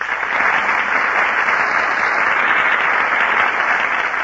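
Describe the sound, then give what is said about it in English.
Steady, sustained applause from a large studio audience at the Gulf Theater for Alice Faye, Herbert Marshall and Humphrey Bogart as they enter the stage, a dense wash of clapping hands that holds at an even, fairly loud level throughout with no voices over it. “That applause you hear, ladies and gentlemen, is for Alice Faye, Herbert Marshall, and Humphrey Bogart, who are just entering our Gulf Theater stage.”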